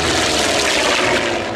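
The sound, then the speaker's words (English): A Grumman F6F-5 Hellcat, a high-powered carrier-launched propeller plane, roars loudly and steadily, a dense drone that holds throughout the short moment with no voices present. “Originally assigned four Grumman F-6F-5 Hellcats, high-powered propeller planes designed to launch off carriers at sea, the group perfected its initial maneuvers in secret over the Florida Everglades.”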